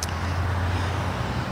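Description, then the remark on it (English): Steady, low roar of road traffic on Highway 99 at the Canby Street overpass in Richmond, Metro Vancouver, a continuous rumble of passing vehicles with a brief higher hiss at the start, with no voices. “Julia Foy joins us live now from Highway 99 at the Canby Street overpass”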